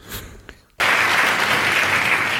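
A crowd bursts into loud, sustained applause after a brief quieter moment, the dense clapping holding steady until the end.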